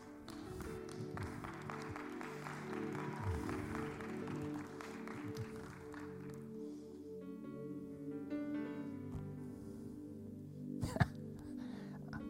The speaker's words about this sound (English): I'm not sure if some of y'all were kind of half clapping. Are you still shocked by the sermon or what?